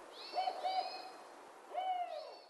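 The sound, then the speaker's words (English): A spotted owl hoots in a short series: two quick, mellow hoots, a brief pause, then a longer drawn-out hoot. It's clear and moderately loud against quiet surroundings, with no voices. “Creates great hunting grounds for species like spotted owls.”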